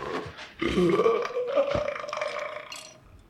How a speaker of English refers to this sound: I've heard some mighty burps in my time, but that's the Blue Ribbon Baby.